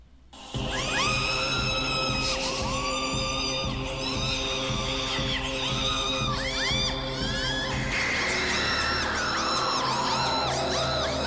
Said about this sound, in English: Well, she starts screaming in the dream. Yes. So I have some of the dream scream.